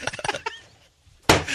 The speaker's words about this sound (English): He just for those who aren't on Twitch, he just took off his shoe and threw it at our now naked walls because we don't have Astros jerseys up.